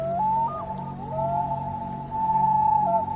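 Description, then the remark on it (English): A loon's long, wailing call that rises, holds on a steady mid-high pitch, and breaks into small pitch steps and slides, heard alone over a low steady hum, heard from inside a tent, the second time it calls. “I'm in my tent and I hear the loon for the second time.”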